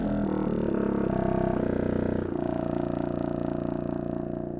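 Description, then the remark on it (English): A contrabassoon plays a short run of deep, buzzy low notes, shifting pitch a few times before settling into a long, rumbling held tone. It is fairly loud, with no voices. “if you'll play the contrabassoon and just da-da-da-da-da”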